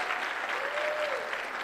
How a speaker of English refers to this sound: I don't know if that actually deserves any applause